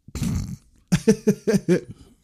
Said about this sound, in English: This is bad enough without you burping.